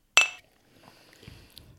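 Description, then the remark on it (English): A single bright glass clink in a toast rings out sharply near the start, its tone lingering briefly before fading into quiet room noise and soft rustling. “Okay. Cheers.”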